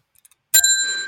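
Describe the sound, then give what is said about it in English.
A single bright ring of a bicycle bell, loud, with a sharp metallic strike followed by a sustained ringing tone that lingers; a few faint clicks precede it. “I swear to God, if you've got that bell, I'm coming round your house, and I'm going to hurt you.”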